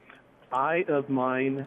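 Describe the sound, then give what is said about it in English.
A rooster crows once in a loud, drawn-out call of several connected syllables, rising and then falling, heard clearly over a quiet background with no talking. “Sorry about the rooster.”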